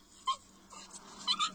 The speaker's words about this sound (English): Was that a video of a supposed bark from a salamander? From a giant Pacific. Oh, yes. Ooh, nice. There we go. But it barked? Our local salamander. Maybe this one might be better. Gosh. Shit, it sounds like a dog. It sounds like a little baby puppy.